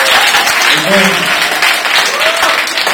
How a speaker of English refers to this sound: So you can clap hands yourself.